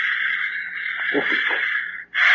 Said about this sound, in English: And the protoplasm is breathing. Listen.